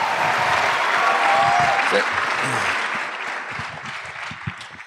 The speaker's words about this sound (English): Wow. That's loud. Was that for me? Those applause? That's crazy.